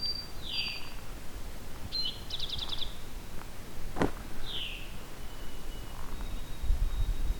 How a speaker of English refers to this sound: It's a couple white-throated sparrows. The mnemonic for that is, oh sweet Canada, Canada.